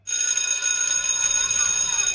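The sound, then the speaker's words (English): A loud electric school bell rings continuously, a steady metallic clanging that fills the space without pause from start to finish, with faint background noise beneath it. “Bright lit classrooms, crowded hallways, loud cafeterias, constant bells ringing, learning comprehension, awkward social situations.”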